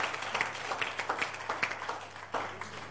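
An audience claps together, a dense, steady patter of many hands forming a continuous crackling wash with a few sharper bursts, with no voices standing out.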